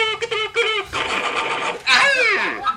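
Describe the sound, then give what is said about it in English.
A man's voice imitates howling, starting with short pulsing vocal notes, then a raspy sustained stretch, and finishing with a loud, high wavering cry that slides downward in pitch. “I need more howling, man. I love the howling.”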